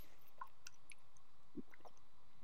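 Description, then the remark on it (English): A quiet swig of wine: a few faint wet clicks and slurps, then a soft gulping swallow, with no talking. “I'm real mad that you just took a swig of your wine and I'm like, water bottle.”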